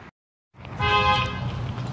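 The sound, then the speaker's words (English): A truck idles and rolls slowly around, its deep engine rumble steady, with a short horn toot sounding over it partway through. “There's a truck driving slow around in front of me.”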